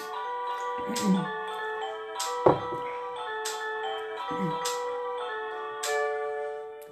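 A cuckoo clock strikes two o'clock in the afternoon with a bright, tinkling mechanical melody, punctuated by several hollow knocks at irregular intervals, fairly loud with no talking.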